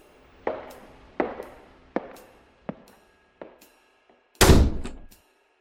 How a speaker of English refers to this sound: I don't know why we included footsteps and a door slam for the disembodied announcer voice, but oh well.